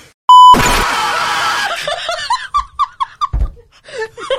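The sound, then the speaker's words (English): A short beep, then a voice lets out a loud, harsh, full-throated scream at the top of the lungs for about a second, re-enacting a shriek of fright, followed by bursts of laughter. “That is exactly how I screamed.”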